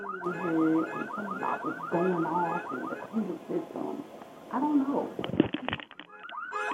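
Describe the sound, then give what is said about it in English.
A car alarm on a fairly new car blares in a loud, warbling electronic pattern that repeats rapidly, then shifts into a harsher stuttering pulse near the end, set off as someone tries to get into the car. “Well, most of them I can get in without the alarm going off. This one's a little different.”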